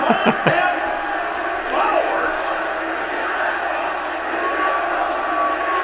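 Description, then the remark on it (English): A large crowd roars and cheers steadily throughout, a dense wash of many voices with a few sharp claps or shouts near the start and no single voice standing out. “See, you need more crowds like this.”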